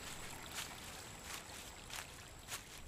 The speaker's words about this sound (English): There's a stream over here. If we follow the water, maybe we'll find somebody.